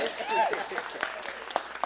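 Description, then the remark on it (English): An audience breaks into applause, a dense wash of many hands clapping, with scattered cheers and voices mixed into the noise for a couple of seconds. “So you guys applaud them.”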